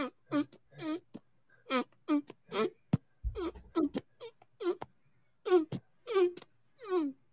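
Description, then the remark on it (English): A rapid series of wet, squelchy hand farts, more than a dozen short bursts in an uneven rhythm, fairly loud with brief pauses between them. “requested hand farts.”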